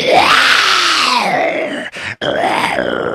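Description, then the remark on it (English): A loud, rough lion growl, most likely a human voice imitating it, rising and falling in pitch for about three seconds with a brief break near the end before the growl resumes. “Mr. Lion, you have to be quiet. Now's not the time, okay?”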